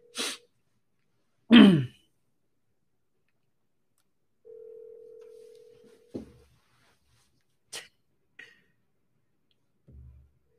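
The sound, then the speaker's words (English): A single steady electronic ringback tone hums through a phone line for a couple of seconds during an outgoing call to a seller, surrounded by sharp clicks, a short throat-clearing burst and faint handling noises; nobody answers or speaks. “So seller's not pick up the phone.”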